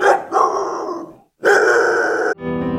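A dog lets out two loud, rough, drawn-out barks, separated by a brief pause, before a burst of music starts at the end.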